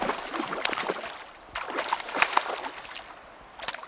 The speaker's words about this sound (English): He pulls the salmon out of the water. It's another female, he says.